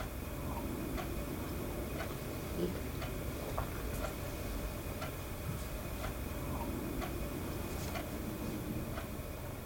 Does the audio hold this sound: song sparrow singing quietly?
no